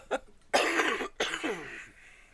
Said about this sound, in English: You triggered my cough reflex on that one. Because you're about to laugh? Yeah.